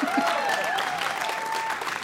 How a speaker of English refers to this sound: Yeah, you can applaud.